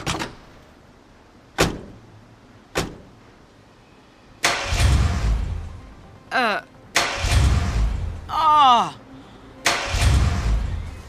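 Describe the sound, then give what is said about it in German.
A few sharp clicks, then a car engine cranks over in three separate grinding bursts, each one stopping without the motor ever catching. Brief squealing sweeps sound between the attempts. “Der Motor springt nicht an.”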